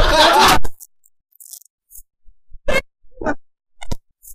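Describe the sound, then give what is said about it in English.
A four-sided die (D4) tumbles onto a hard tabletop with a loud initial clatter, followed by a few sharp, separated taps as it bounces and settles, with no talking. “We're going to find out just who the killer is going to be by rolling dice.”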